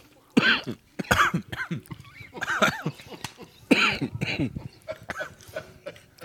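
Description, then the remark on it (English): A coughing fit caused by the pepper after eating spicy Nashville hot chicken: a string of harsh, raspy coughs in irregular bursts, some with throaty rasping in between, loud and dry with no talking. “Really, what made me cough was just the pepper, the it was not the cayenne.”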